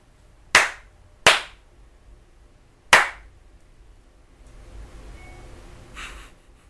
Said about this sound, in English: Three slaps and a like an email sound or whatever.